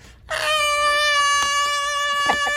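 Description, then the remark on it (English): A sustained, high-pitched sung chandelier scream holds one steady piercing note for over two seconds, rich in bright overtones, loud and alone with no talking. “I was able to do a chandelier scream.”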